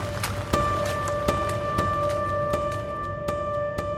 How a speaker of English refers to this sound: It was raining when I walked over.